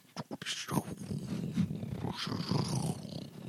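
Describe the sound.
A voice imitates a creature's crackling, fire-like sound: a few short clicks, then a continuous raspy, rumbling growl lasting about three seconds, low-pitched and steady in loudness.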